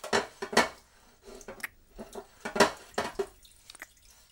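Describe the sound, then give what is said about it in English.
Dishes and cutlery clink and clatter in irregular bursts, with a soft watery wash underneath, like someone rinsing plates at a sink. No one speaks. “Then let's see how I can challenge you after we wash the dishes.”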